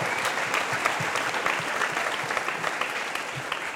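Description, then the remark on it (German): Steady, dense audience applause for Vivian as she is invited onto the stage, many hands clapping at once, a continuous crackling wash at even loudness throughout, with no voices standing out. “Applaus für Vivian!”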